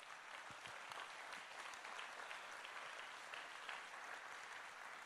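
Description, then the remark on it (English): A large audience at a morning church service claps steadily for several seconds to applaud their Savior, a dense, sustained wash of applause with no voices standing out. “If you are grateful for the spiritual freedom that we have, can we applaud our Savior this morning?”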